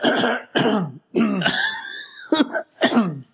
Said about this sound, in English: Was that good throwing? Just let me clear my throat.